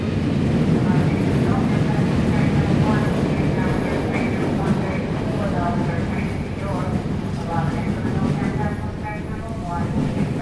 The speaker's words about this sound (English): Episode 3, Train Station.